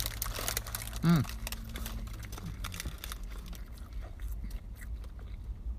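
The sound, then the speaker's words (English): Someone in a car bites into a Mr. Fish fish sandwich with lettuce and tartar sauce, followed by soft, wet chewing and faint crinkling of paper, with a brief hummed murmur early on. “Got a juicy bite.”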